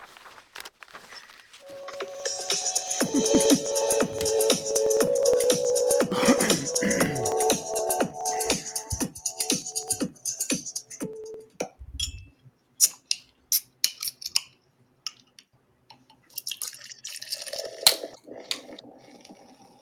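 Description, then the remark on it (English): A drink is poured in one long, steady stream for several seconds, fairly loud, followed by scattered clicks and light taps as it settles. “That long pour concludes our intro music.”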